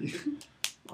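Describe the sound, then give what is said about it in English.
A single crisp finger snap rings out loud, a quick sharp click that stands out briefly amid soft surrounding speech. “If I was gangster enough, I would have, like, finger snapped or whatever they do.”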